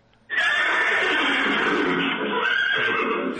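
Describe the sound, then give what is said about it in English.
A loud, sustained horse whinny plays from a toy laser horse whip, starting abruptly and holding steady for about three seconds with a bright, slightly tinny electronic quality. “Well, I told you it was a laser horse whip. Uh-huh. It makes a fun horsey sound, too.”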